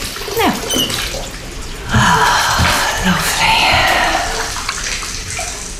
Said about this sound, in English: What's that splashing?